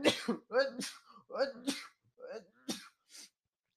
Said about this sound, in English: But back, hold on, I need to sneeze.